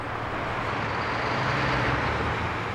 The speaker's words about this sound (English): Over 100,000 cars and trucks thunder across here every day.